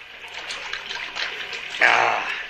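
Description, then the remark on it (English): Water runs and trickles steadily, then grows suddenly louder and fuller near the end, as if the flow is poured harder. “Yeah, that water looks good. Have some.”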